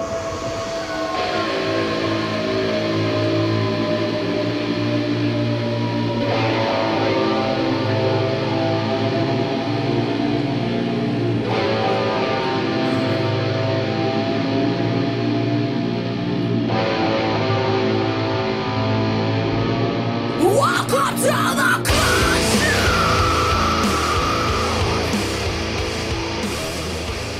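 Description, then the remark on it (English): A loud, dense rock track with heavy sustained distorted instruments and a woman singing, moving through several sections before a brief noisy transition into a brighter closing part. “I thought that's what I heard him scream. That's a woman singing.”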